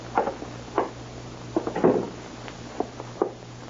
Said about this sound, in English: They'll knock down the door if I don't. Don't open that door. Don't.